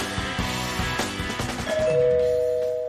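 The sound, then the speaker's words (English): A doorbell chime rings, a bright tonal sound that follows a burst of busy, ringing notes and then holds one steady pitch, fading slowly. No one speaks. “Someone's at the door.”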